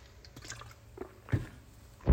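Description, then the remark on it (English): Quiet sipping and swallowing of water, with small wet mouth sounds and a couple of louder gulps or clunks near the end. No one speaks. “Let me have a drink of water.”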